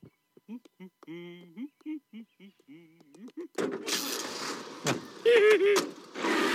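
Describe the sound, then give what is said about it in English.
A few seconds of voice-like chatter give way to a Canyon Arrow car being hot-wired, its engine abruptly turning over and roaring to life, loud, with rough mechanical noise that rises toward the end. “It's really good at hot-wiring that car.”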